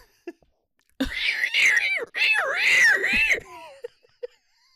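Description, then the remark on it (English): A person imitates a giraffe's bleat with a strained, wavering vocal sound in two long pulsing bursts, the pitch bobbing up and down, followed by a few short breathy clicks. “I think they make like a bleating sound, as we all know from Festival of the Lion King.”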